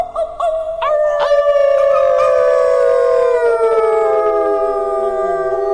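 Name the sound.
people imitating wolf howls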